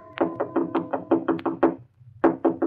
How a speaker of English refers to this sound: It was almost 3 a.m. when Andy knocked on my apartment door.